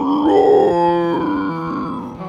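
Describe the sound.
A person voices a single long, loud dragon-like roar imitating a large blue dragon that flies up out of the ground and spreads its wings: a strained, guttural growl that swells and wavers in pitch for about two seconds, with no other talking.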